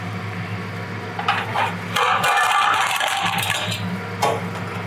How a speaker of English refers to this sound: All right, so I'm grabbing a large flat-bottom frying pan. So grab your large frying pan.